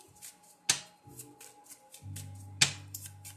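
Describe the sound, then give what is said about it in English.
A deck of playing cards being shuffled, with soft papery shuffling broken by two sharp riffling snaps, over a faint steady hum and no talking. “So I have angel cards, but I use most of the time playing cards, because it's the shuffle for me.”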